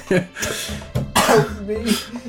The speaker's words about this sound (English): It's the whiskey. Yeah, oh, I just coughed into the mic, I'm sorry. Damn. Rip the headphone users like this.